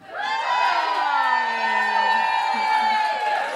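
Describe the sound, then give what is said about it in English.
A live show audience cheers and whoops loudly and steadily for several seconds at a performer's on-stage pregnancy announcement, a dense wash of many voices with a few higher shouts rising above it, holding strong throughout. “Oh, love people cheering the fact I've had unprotected sex.”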